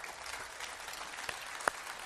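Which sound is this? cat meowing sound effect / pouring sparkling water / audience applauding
audience applauding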